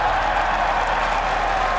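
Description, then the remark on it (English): A golf gallery at St Andrews cheers and applauds as Cameron Young's shot runs through the Valley of Sin toward the green, a steady, dense roar of clapping and voices that holds at an even, fairly loud level throughout, with no distinct speech. “Go on, keep going, listen to the crowd.”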